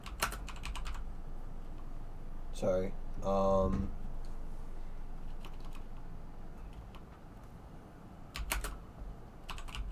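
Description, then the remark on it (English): Quick bursts of clicking keystrokes on a computer keyboard, at the start and again near the end, with a short stretch of a voice talking in between. “I'm just gonna type this out and we can fix it later.”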